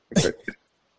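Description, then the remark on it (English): A fairly loud cough: one harsh, raspy burst followed by a shorter second hack, then silence. It sounds like a person imitating someone coughing. “He just coughs on people.”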